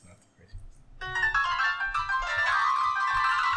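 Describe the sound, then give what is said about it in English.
The Crazy Bus video game theme song, played with I Am Setsuna chiptune sounds, kicks in after a brief quiet moment: bright, buzzy electronic tones play a busy melody that stays loud and steady, with faint low rumbling underneath. “It's the Crazy Bus theme song using the using I Am Setsuna. The I Am Setsuna chips.”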